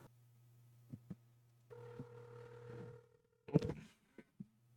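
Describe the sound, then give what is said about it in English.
One burst of an outgoing call's ringing tone, a steady electronic purr lasting about a second over a low constant hum, followed by a sharp clatter and a few clicks. “I don't know why this guy wouldn't pick up the phone.”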